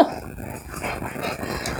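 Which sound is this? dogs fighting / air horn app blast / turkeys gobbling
dogs fighting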